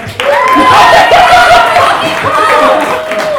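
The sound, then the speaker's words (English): A live audience breaks into loud, sustained applause for comedian Aaron Woodall as he is introduced, dense clapping mixed with scattered cheers and whoops that lasts a few seconds without letting up. “Aaron Woodall, everyone, give a big round of applause.”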